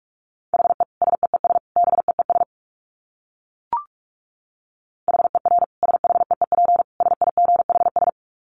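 Rapid Morse code at 45 words per minute: a steady mid-high tone keyed in fast dots and dashes, in two bursts separated by a pause marked by a single brief click.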